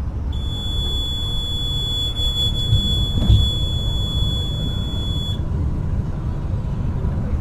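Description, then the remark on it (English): A steady, high-pitched electronic speed-limit alarm on an international bus in Mexico, which sounds whenever the driver exceeds the speed limit, sounds continuously for about five seconds over the low rumble of the moving bus, then cuts off, leaving just the engine and road noise. “Buses inside Mexico are equipped with alarms that sound every time the driver goes over the speed limit.”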